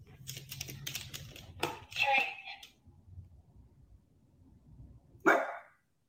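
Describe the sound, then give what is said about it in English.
A dog being trained for a treat gives two short, sharp barks a few seconds apart, the second loud, following a patch of rapid clicking and tapping, with faint murmuring in the background. “Nope, you barked. No treat.”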